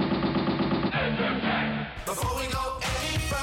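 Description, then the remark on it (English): An Entertech battery-powered toy water gun, made to look like a real gun, sounds its electronic firing effect in rapid, buzzy bursts, loud and continuous, then breaks into harsher, noisier blasts near the end. No one speaks. “There's also the M16 rifle, the sidekick pistol, the RPG rocket water launcher, the AK Centerfire. The look, the feel, the sound, so real.”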